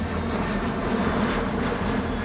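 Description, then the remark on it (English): A loud, steady roar of the engines of an unidentified aircraft flying low over Egyptian airspace on a September evening, a dense drone with a shrill edge riding on top, continuous and unbroken with no voices. “An unidentified aircraft is flying low over Egyptian airspace. The only clue to its presence is the distinct shrill noise of the engines.”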